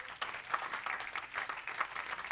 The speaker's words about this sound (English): Can we give the woman of God a hand clap?